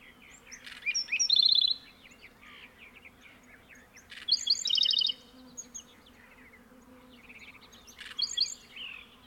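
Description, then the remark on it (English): A steady, low droning hum of many buzzing bees in the desert in mid-morning fills the background throughout, while a black-throated sparrow's bright, trilling phrases break in three times over the top. “Here's a commonplace desert songbird, a black-throated sparrow, thoroughly awash in the bee buzz of the mid-morning soundscape.”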